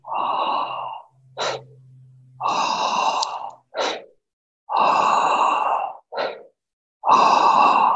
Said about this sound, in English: So you'll see it's quite a fast pace, but it is rhythmical and it is quite connected and nonstop. So breathing a little deeper than normal, a little faster than normal, doing that for 3 to 5 minutes, and then just on the last breath, exhale, relax